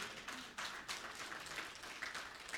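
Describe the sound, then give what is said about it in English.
An audience applauds in a steady, dense wash of clapping that carries through the whole moment without letup. It is fairly soft overall, with no voices heard above it. “And that was a good time for you to clap, church.”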